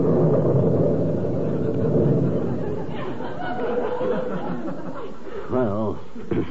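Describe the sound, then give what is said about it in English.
A loud, rolling thunder sound effect fills the first few seconds, then fades as chatter and chuckling voices take over, with a brief voiced exclamation near the end. “If I ain't telling the truth, may lightning strike...”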